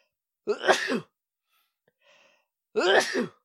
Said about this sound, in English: Bless you.